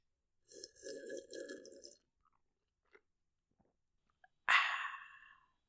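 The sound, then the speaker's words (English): A slurping sip of beer lasting over a second, a few faint swallowing clicks, then a loud, breathy satisfied exhale. “We really need to hear you drink a sip.”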